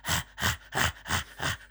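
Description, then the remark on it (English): A person imitates Luke Shaw breathing heavily like a dog: five quick, rhythmic breathy puffs, each a loud, airy rush of breath at a steady, fast pace, with no talking. “You know where he is, you can just hear him panting.”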